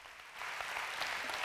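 An audience applauds to welcome Pastor Dale Sauls, a dense wash of steady clapping from many hands that swells slightly after the first moment and holds at a fairly loud, even level with no voices.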